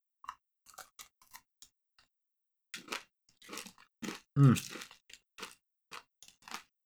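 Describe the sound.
Someone bites and chews an Oreo cookie, giving a run of sharp, irregular crunches, with a louder burst of crunching and a short low murmur from the voice midway through.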